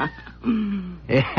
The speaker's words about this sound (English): It's that cat that's been staring at us.